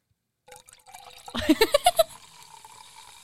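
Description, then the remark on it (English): A fizzy drink is poured, with a quick run of glugs that rise in pitch as the container fills, over a steady bright hiss of bubbles that lingers afterward. “The fizz.”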